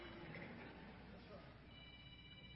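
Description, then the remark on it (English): A telephone rings faintly during a church service, its tone partly buried under a steady wash of crowd murmur and indistinct voices. “For those in the other assembly, there was a phone call, so I don't know, maybe yours rang too.”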